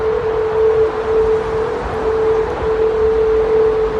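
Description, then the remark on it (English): A steady, eerie hum from wind passing through the Golden Gate Bridge in San Francisco, recently overhauled to be more aerodynamic. It holds one sustained mid pitch over a broad rushing wind noise, nearly unwavering and fairly loud. The hum can be heard about 3 miles away. “San Francisco recently overhauled the bridge to make it more aerodynamic. And this is what it sounds like. It's weird. Yeah, humming sound.”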